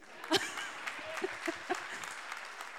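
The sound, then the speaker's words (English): An audience breaks into applause, many hands clapping in a dense, scattered patter with a few sharper claps standing out, moderately loud, with no talking over it. “Okay, you can clap.”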